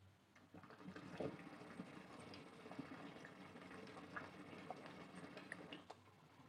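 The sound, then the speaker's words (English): Continuous bubbling and gurgling of water in a water pipe during a long hit, lasting several seconds, choppy and steady, with scattered faint clicks over a low hum. “There was like bubbles and like choppiness, but there was also like a weird noise like that happening.”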